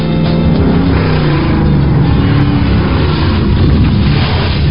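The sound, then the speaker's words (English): A car engine rumbles for several seconds, loud and steady with low droning tones and some rough texture as the car slowly reverses and turns around, with no voices present. “Well, all she did was reverse her car and turn it around.”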